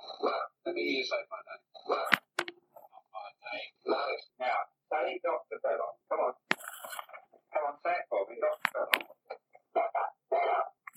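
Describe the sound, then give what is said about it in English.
A dog barks over and over in quick, uneven bursts with short gaps between them, sounding slightly muffled, captured on microphones set up during an investigation. “So I'm going to insert that little blurb of the dog's barking that he got on recording.”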